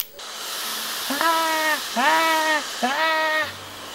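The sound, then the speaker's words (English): A bidet's dryer blows a loud, steady rush of air for the whole stretch, while three drawn-out, wavering vocal cries rise over the hiss one after another. “That drying mechanism is pretty powerful, too.”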